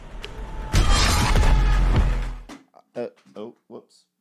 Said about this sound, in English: Explosion. Explosion.